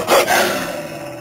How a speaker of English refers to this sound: Oh, hey, it's a pack of hungry wolves. I might have known it was a bad idea to venture into the snowy moonlit woodlands beyond Sanityville in the dead of winter. A bad idea for you wolves, that is.